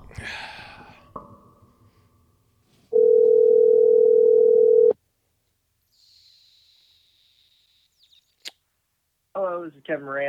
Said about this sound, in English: So we're just going to call and find out here. Let's see if he picks up here.